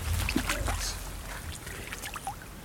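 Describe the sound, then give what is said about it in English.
Watery splashing and sloshing of a hooked 8-ounce fish, with short bursts of thrashing in shallow water over a low rumble, loudest at the start and settling into lighter dribbles and splashes. “Oh, splashing around.”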